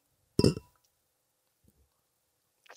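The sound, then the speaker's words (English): A single bright, sharp clink of glasses holding a bourbon and orange juice drink, tapping together in a toast, then fading into quiet with a faint soft knock and a brief rustle near the end. “All right, raise it. Cheers. Cheers in it to you.”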